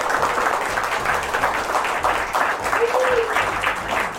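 A steady round of applause from a group for a guest: dense overlapping claps holding at an even loudness for about four seconds, with a brief whistle-like tone rising out of it near the end.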